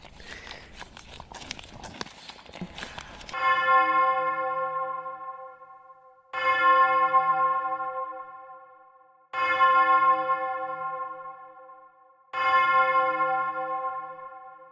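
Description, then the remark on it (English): A bell rings loudly four times at steady intervals of about three seconds, each strike ringing out and fading before the next, after a few seconds of noisy clatter, marking the end of an oatmeal eating contest. “that must have been the bell, right?”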